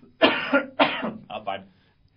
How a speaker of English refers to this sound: We need someone that could just cough off mic every now and again.